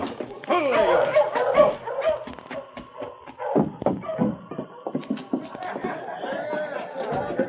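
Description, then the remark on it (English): A sled dog team halted in front of a cafe barks and yips excitedly together, a busy, overlapping chorus of high yelps and sharp barks, fairly loud throughout. “Hogg halted his team in front of the Mad Dog Cafe”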